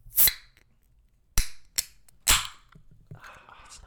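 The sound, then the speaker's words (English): A can of Liquid Death Mountain Water cracks open with a sharp, bright snap of its tab, followed by a few more crisp metallic clicks and pops spaced unevenly, then a soft fizzing rustle at the end. “That's a good snap.”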